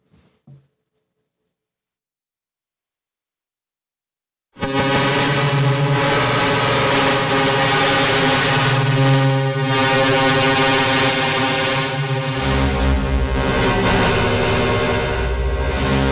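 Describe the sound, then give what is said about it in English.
After a few seconds of near silence, a static square wave from the even VCO, taken from the output of the AI Synthesis Quad VCA mixer and fed into Klaus, heard as the wet signal only, switches on abruptly and holds one unchanging buzzy, harmonic-rich tone at a constant loud level. “And that is just a static square wave.”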